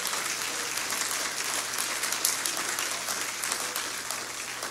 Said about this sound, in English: Can you clap your hands unto Jesus? Hallelujah.